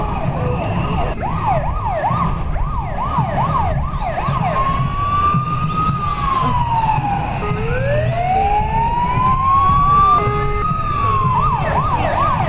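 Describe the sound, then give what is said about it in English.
Loud fire engine sirens from a fire engine float in the Pride parade in Brighton blare continuously, switching between a rapid yelp and slow rising-and-falling wails, over a rumbling engine and street noise. “I know, it's actually a fire engine, which is one of the floats. That's why we're getting all these sirens.”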